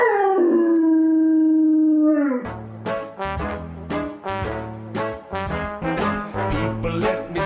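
A dog lets out a single long, loud howl that slides downward in pitch, then it cuts off as upbeat rhythmic music with a steady beat starts playing.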